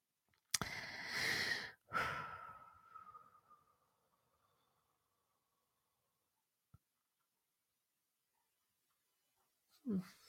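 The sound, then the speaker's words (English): Two loud, heavy breaths, a sharp exhale then another, trailing into near silence with a faint click and one more breath at the end. “Sorry, I know listening to me breathing and going, isn't necessarily great listening, but sometimes it just takes a minute to make the connection.”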